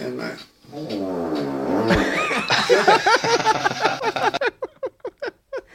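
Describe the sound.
A long, buzzy, wavering fart sound, likely imitated by a voice, rumbles for a couple of seconds, then breaks into bursts of loud laughter that trail off into short chuckles.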